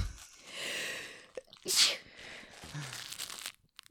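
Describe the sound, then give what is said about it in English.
Gnawing and ripping as a pet chews a new Valentine's Day toy: irregular crinkly, crunchy scraping with one sharp, loud tearing burst midway, then softer chomping fading out. “He's chewing at a new toy.”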